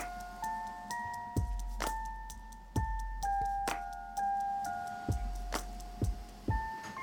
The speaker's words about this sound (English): So my jars have been boiling, they're hot and they're ready. I'm gonna pull them out of the canner.